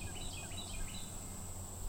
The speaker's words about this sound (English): I'd been to some other picnic tables, and there were just a lot of cicadas in the trees, just buzzing and buzzing. And you can hear them here.